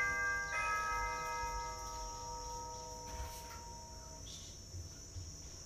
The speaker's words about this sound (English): And there goes the doorbell.